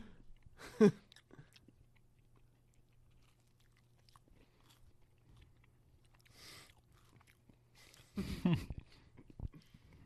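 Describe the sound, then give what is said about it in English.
Chewing of bread at a Passover meal, with a sharp crunchy bite near the start, a soft chew midway, and a denser burst of mouth-full crunching toward the end, quiet pauses between. “I should have swallowed first. Is this just... Yeah, don't talk with your mouth full either.”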